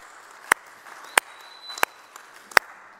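Audience clapping in a slow, steady rhythm as a staff member comes up to the stage: four sharp, loud claps spaced evenly about two-thirds of a second apart, over a quiet background hum with no talking.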